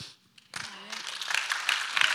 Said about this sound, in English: They're cheering in the hallway. If you hear that, it's because it's promotion Sunday.